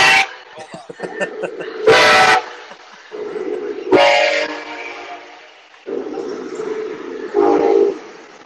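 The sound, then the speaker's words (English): A train rumbles past late at night, its whistle sounding in several loud, drawn-out blasts over a steady, droning roll of wheels and engine. “which I will say about the interview as the train rolls by”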